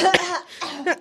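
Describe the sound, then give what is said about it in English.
A short burst of harsh coughing, three raspy hacks in quick succession, loud and strained, with brief rough gaps between them and no talking. “Please have your coughing fit.”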